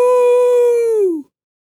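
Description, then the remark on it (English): A single loud, sustained vocal "woo" imitating a wolf howl, holding a steady pitch for about a second before sliding downward and cutting off, with nothing else heard. “It makes you feel like a roller coaster just it went does. By. Yeah. Or a wolf.”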